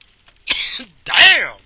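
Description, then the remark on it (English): Two rough coughs in quick succession after taking a hit, the first short and breathy, the second longer and hoarser with a strained, raspy edge. “You don't get off till you cough, y'all.”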